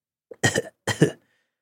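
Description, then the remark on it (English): Two harsh, raspy coughs sound very close to the microphone, one right after the other with a short pause between, preceded by a small catch of breath. No talking. “Although you hacking into the microphone just for whatever reason”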